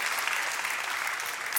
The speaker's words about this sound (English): And he's happily engaged and getting married next month. I think that's worth clapping for.